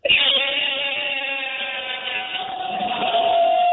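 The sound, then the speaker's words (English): A person imitates a rooster crow with one long, loud, sustained nasal cry lasting several seconds, wavering slightly in pitch and sliding lower at the end, sounding little like a real rooster. “give us a little crow.”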